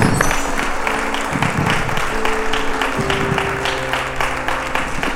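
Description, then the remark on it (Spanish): Steady applause from a church audience after a prayer, dense overlapping clapping that holds at a fairly even loudness for several seconds, with a faint sustained tone humming underneath. “Un aplauso, Señor.”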